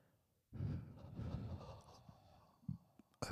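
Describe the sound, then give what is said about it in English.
A loud rush of breath blown straight into a microphone, several people exhaling at once for about three seconds, with a brief gust near the end and another sharp blast at the finish. “End it like how we usually end it, by breathing into the mic in 3, 2, 1.”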